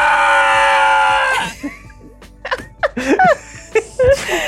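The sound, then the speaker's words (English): A loud, sustained scream cried out by a person for over a second, likely a vocal imitation, then cut off and followed by short, choppy bursts of voice and laughter-like sounds. “And screaming. Ah!”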